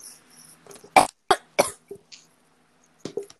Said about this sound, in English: stop coughing up a lung.